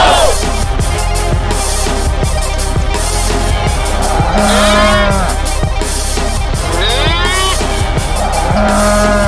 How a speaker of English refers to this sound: Back from the theme song, as I recall, there's a lot of mooing at the back end of that.